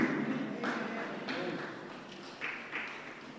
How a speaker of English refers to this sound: Thank you for clapping.